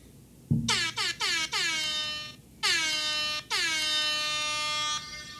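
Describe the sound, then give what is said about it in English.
A tinny air horn sound effect played from a phone app blares in a rapid series of short blasts, then two longer sustained honks, loud and alone with no talking. “I'm sad about the Rap Air Horn. It sounds like it's an app. Dying.”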